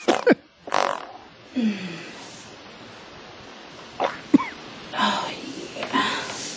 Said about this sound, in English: that was what the video was, but the audio was totally Brazilian fart porn